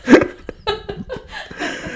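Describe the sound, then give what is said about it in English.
A beagle barks through a wall at other dogs in a quick series of short, muffled yelps, the barks uneven in spacing and moderately loud, with no talking. “as our beagle barks through the wall at other dogs, so she's a turd.”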